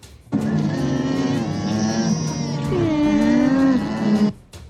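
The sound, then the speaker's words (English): An alpaca gives a loud, drawn-out nasal call lasting about four seconds, its buzzy tone wavering and bending upward partway through, with no voices alongside. “It is an alpaca.”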